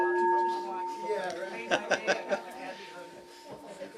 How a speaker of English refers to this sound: Hate to use the meditation bell as a school bell, but there it is.